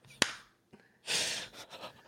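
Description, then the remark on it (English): A single loud, sharp hand clap, made to mark an edit point in a recording, rings out near the start, followed after a short pause by a breathy, hissing rush of air that fades away. “I'm going to do a big clap to show me the edit point in the edit.”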